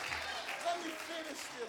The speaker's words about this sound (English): I'm not getting enough clap. I want to know who's on the Lord's side.